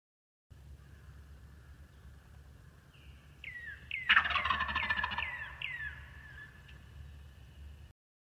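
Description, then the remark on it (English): A male wild turkey, recorded on a phone, lets out a loud, rapid gobble, a burst of rattling, descending notes lasting about two seconds, framed by softer trailing calls over a steady low background rumble. “I took a video of some of this with my phone, and you can hear a clip of his big, authoritative gobble here.”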